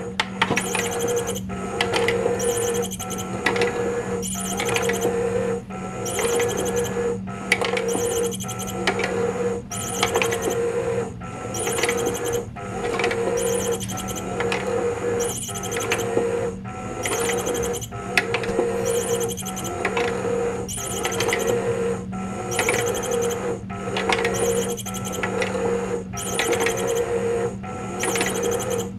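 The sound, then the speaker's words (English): A Pop and Play motorized cat toy, which picks different holes at random and moves through them, whirs steadily while repeated high chirping beeps sound in a regular pulsing rhythm over a constant mechanical hum, with no talking. “Let's just let it run with the chirping.”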